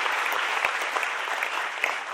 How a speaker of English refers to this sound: Yeah, you can clap. It's okay to clap in church.